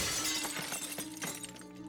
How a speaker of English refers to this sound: As he stood, he heard a loud bang, and the window shattered.